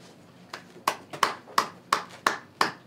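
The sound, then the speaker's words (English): A lone pair of hands claps in a slow, steady rhythm, about seven sharp claps evenly spaced, fairly loud, with no voices over them. “I feel like that needed a round of applause.”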